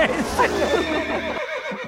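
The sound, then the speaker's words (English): A horse whinnies loudly, a shrill, wavering neigh lasting about two seconds that breaks into shorter, fading snorts at the end. “Stop the horse, not me.”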